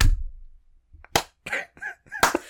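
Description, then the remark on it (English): A few sharp, loud hand claps spaced irregularly, each a crisp smack, with brief murmured vocal sounds in between. “Just for full disclosure, that's clapping. That is clapping.”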